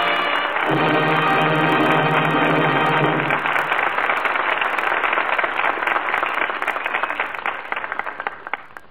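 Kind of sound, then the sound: crowd, studio audience applause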